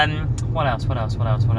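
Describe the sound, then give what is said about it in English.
A steady low rumble of heavy road traffic droning in the background, continuous, with muffled voice-like sounds rising over it in short bursts. “There is much traffic on the roads today.”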